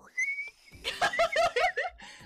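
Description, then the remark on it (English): A person gives a brief, steady high-pitched whistle imitating a boiling kettle, then breaks into several rhythmic bursts of loud laughter. “Am I supposed to be the kettle?”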